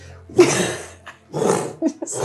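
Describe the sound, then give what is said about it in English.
During a tabletop role-playing game, a voice imitates the bellowing roar of a Dracolich, an undead dragon, as it lands among the players' characters: a few loud, rough, raspy, growling bursts with short breaks between them. “It lands in amongst all of you and lets out this bellowing roar.”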